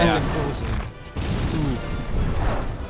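The Falcon spaceship crashes in a movie scene, a loud, sustained roar of grinding metal and rumbling debris, briefly dipping before surging again with heavy low-end impacts throughout.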